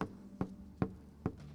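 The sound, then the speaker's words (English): Knocking on a door: four solid, evenly spaced knocks in a steady rhythm, each a short dull thud, fairly loud, with no voices. “I'm just knocking at the door”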